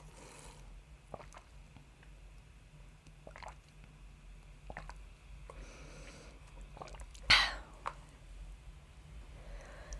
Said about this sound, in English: Let me just get some water real quick.